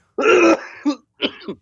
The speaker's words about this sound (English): That cough disappears. I think everything is gone except for this cough.